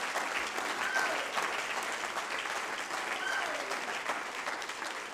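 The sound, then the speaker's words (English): A church audience claps its hands unto the Lord, many hands blending into a dense, continuous wash of applause that holds at an even level throughout, with faint voices underneath. “Oh, clap your hands unto the Lord, all you people.”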